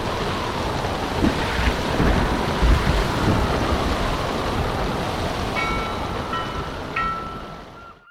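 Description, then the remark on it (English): A storm rages over the island of Matinicus: dense rushing wind and surging waves, with a few deep thunder rumbles early on and a faint high whine near the end before it fades out. “Eventually, despite the storm raging outside, I fell asleep.”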